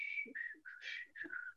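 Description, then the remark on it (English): A person whistles a short, lilting tune of a few sliding notes, fairly loud, with a brief low breathy sound between phrases; the whistling is done while going to the toilet. “Now, another thing, you say, okay, I'm gonna go to the toilet, and you go to the toilet, and you, first of all, you have to smile, and you have to whistle, an anti-peeing whistle.”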